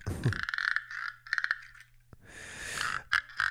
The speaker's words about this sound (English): Oh, wow. I don't know what that thing is called, but it's definitely like a frog mimicking. I'm obsessed with it.